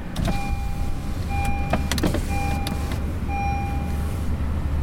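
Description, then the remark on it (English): Power windows of a car whir as they roll down, with a steady low engine rumble underneath and a few clicks and repeating soft tones in the cabin, with the air conditioning on and the car hot inside. “So I have to open the windows.”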